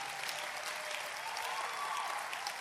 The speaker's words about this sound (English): It's a special day because it is our Honor Your Prophet Sunday. And I thought you are clapping better today.